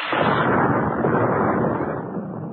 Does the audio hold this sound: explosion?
yes